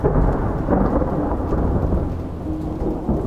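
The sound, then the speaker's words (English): A loud, rolling peal of thunder rumbles deep and steady for several seconds, heavy, with a faint wash of rain beneath it and no voices. “Just then, I was startled by a loud peal of thunder.”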